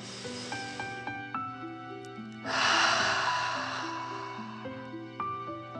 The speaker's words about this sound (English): Breathing in through your nose and out of your mouth.